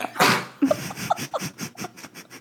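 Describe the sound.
A pet dog named Timber gives a sharp, harsh cough, then a quick rhythmic run of short hacking bursts, fairly loud, while a person briefly speaks over it.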